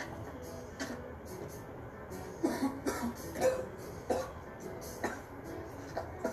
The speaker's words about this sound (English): Honestly, why is he coughing so bad if he's accustomed to doing this?